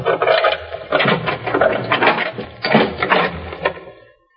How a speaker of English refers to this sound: Have you got a key to this room? Yes, sir. We'll open the door then. You don't think there's anything wrong, mister? Now, don't ask questions. Just open the door, please, and let's have a look inside.